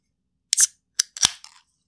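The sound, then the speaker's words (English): A can of Sierra Nevada Hop Splash, a zero-alcohol, zero-calorie hop water made of water, hops and carbon dioxide, being cracked open: a couple of sharp metallic clicks and snaps, then a brief hissing burst and fizz that quickly fades. No one speaks. “So let's crack open Hop Splash from Sierra Nevada.”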